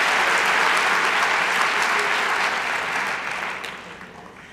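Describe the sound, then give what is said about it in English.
A crowd applauds all the people who take care of them, steady, dense, crackling clapping that stays loud for several seconds, then thins and tapers off toward the end. “Let's give a round of applause to all the people who take care of us and make our lives possible every day.”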